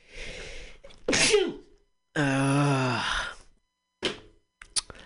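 A loud sneeze: a breathy intake, a sharp explosive burst, then a long drawn-out voiced groan and a few short sniffs at the end, with no talking.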